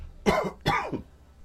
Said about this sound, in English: And anyway, we're back. And I'm coughing. So I'm going to need you to, excuse me, help me while I mute this mic.